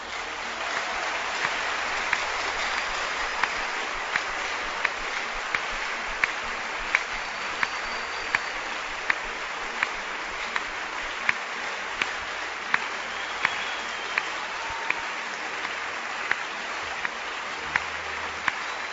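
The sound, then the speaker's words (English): An audience claps steadily for about nineteen seconds, a dense, even wash of many hands with a few sharper individual claps standing out at a regular pulse, and no voices over it. “Can clap again.”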